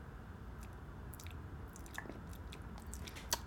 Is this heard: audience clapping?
no